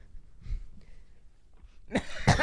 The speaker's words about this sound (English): Why did you just sniff the sock? Are you okay? That sock does not smell good.